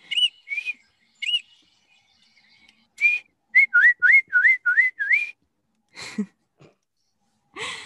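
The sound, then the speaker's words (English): A person whistles an imitation of a Baltimore Oriole's song, with a few slurred two-note phrases and then a quick run of five rising-falling notes, clear, followed by a soft breathy noise. “There's like five birds that all sound like that.”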